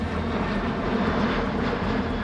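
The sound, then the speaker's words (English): A loud, continuous engine roar of an unidentified aircraft flying low over Egyptian airspace on a September evening, with a shrill, high-pitched edge, steady overhead throughout, with no voices. “The only clue to its presence is the distinct shrill noise of the engines.”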